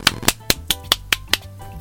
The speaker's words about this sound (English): Let's clap. Let's just clap.